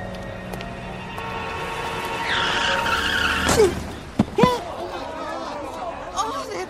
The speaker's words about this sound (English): What happened? That car, it hit him. Did you see it? Somebody call an ambulance.